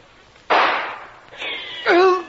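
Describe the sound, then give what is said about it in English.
A loud volley of rifle gunfire from guards on a beach erupts in a sharp burst, followed by rougher noisy cracks and a brief harsh, tonal cry as the shots trail off. “a surprise is waiting for them in the shape of a volley of gunfire from the guards.”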